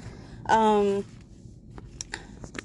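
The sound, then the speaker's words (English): A brief steady hummed voice tone, then several short crisp rustles of paper being handled at a workplace, light and scattered over a quiet background. “Fear rustling. Oh, there's papers here because we're doing another true crime episode today.”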